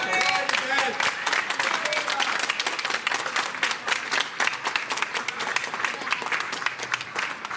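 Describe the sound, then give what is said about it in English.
A crowd of supporters outside claps and cheers steadily, dense rapid applause with whoops and voices mixed in, loud and continuous for several seconds. “They were the cheers we can hear there of the supporters outside”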